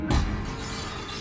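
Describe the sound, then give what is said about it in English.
A sudden crash at the start as intruders break an apartment window, followed by a dense, sustained rush of bright, tinkling shards of glass scattering, loud, with no voices. “A moment later, there is a crashing sound and the tinkling of glass.”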